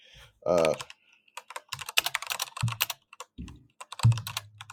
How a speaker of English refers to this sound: So I'm sure you guys hear me tippity typing over here. Tippity typing. Tippity typing.